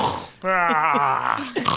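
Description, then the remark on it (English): A voice imitates the loud, rattling snoring of a character sleeping in a chair in the corner, rocking: one long, buzzy, growling inhale lasting about a second, breaking into choking sputters, then a short gasp at the end. “And Balnor's just snoring so loudly in the corner on the chair, rocking.”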